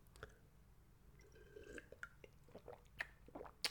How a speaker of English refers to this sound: Quick sip of water. Water break, boss. Don't mind me, boss.